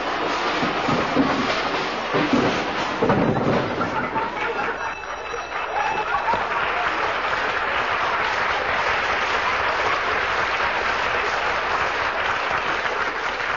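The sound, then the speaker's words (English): A sound effect of Fibber McGee opening his closet door: a long, noisy cascade of clattering and crashing objects tumbling down, one jumble of bangs after another, blending into sustained loud applause and laughter from an audience. “When Fibber runs to open that closet door, look out!”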